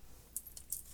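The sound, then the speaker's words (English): Two ten-sided damage dice rolling on a table: three quick, sharp plastic clicks spaced a fraction of a second apart, fairly faint, with no talking. “Now you roll the damage dice on your... 2d10.”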